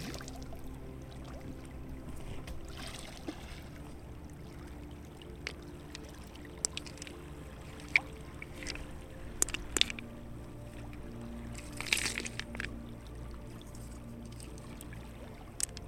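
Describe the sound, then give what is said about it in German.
Gentle lapping water with a low steady hum, broken by a few quick, light splashes and plinks in the middle as a flat pebble is skipped across the water at the edge of a bay before sinking. “Am Rand der Bucht hebst du einen flachen Kieselstein auf und lässt ihn über das Wasser springen.”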